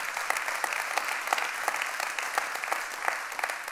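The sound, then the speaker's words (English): A church audience claps steadily after hearing that 6 people made Jesus their king and 15 families visited for the first time last week, many hands producing a dense, even wash of applause with sharp individual claps popping out, sustained at a moderate level with no voices. “The only reason I didn't clap along with you is because I wasn't trying to celebrate 1 week.”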